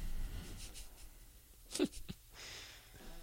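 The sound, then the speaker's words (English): Quiet, scratchy strokes of a pen moving across a piece of paper, a few short scribbles with a sharper tap in the middle, otherwise still. “He was writing down over there on a piece of paper.”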